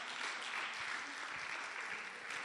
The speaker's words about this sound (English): Clap for me, clap for me.